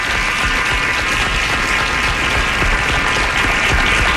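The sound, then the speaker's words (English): Loud, sustained audience applause at a Coats for Kids Day show, a dense wash of many hands clapping steadily for several seconds with no voices standing out above it. “Applause. Crowd is loud.”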